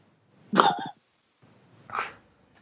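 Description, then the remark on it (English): A dog named Naya lets out two low, breathy groans, the first stronger and throatier, the second softer and airier after a short pause, with no talking. “That was Naya groaning.”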